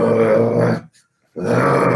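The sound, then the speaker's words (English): A person imitates the growl of a Kodiak bear while watching a film: two loud, rough, low guttural bursts separated by a short silence, harsh and throaty with no words spoken. “And so we're watching this awesome film, and I start mimicking that bear.”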